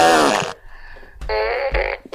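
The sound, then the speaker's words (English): Loud, buzzy fart sound effects from a fart gun burst out in quick succession, a long sputtering blast followed by shorter brassy toots, punchy, with no talking. “It's a fart off.”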